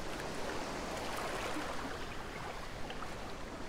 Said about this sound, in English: We enjoy the sounds of the beach environment.